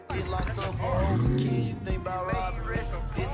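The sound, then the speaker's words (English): A Scat Pack muscle car's engine roars up and back down in one loud rev as it pulls away from a car meet at night while being carjacked, with a noisy crowd of voices in the background. “brought a scat pack to a car meet at night, and this is what happened.”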